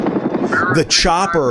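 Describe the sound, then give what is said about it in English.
A helicopter's rotor chops steadily in a fast, rhythmic thump in a movie scene, fairly loud, while a voice talks over it toward the end. “The helicopter was very much every an early 80s.”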